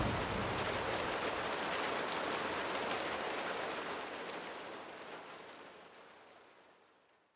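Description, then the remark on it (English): Steady rain of the rainy season in June falls in a dense, hissing wash with scattered drops pattering on a surface, holding evenly before slowly fading out toward the end. No voices are heard. “It's another rainy season. And we are waiting.”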